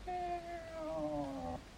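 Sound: cat meowing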